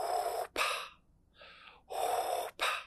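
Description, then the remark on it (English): Heavy, rasping breaths from a man mimicking Darth Vader's mechanical respirator: long hissing inhales and exhales in a slow, steady cycle, fairly loud, with no speech. “I can hear him breathing.”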